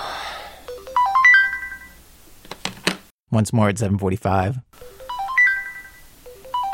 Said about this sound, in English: hears the alarm that is supposed to wake him up, and he shuts it off. This happens again at 7:35, and again at 7:40.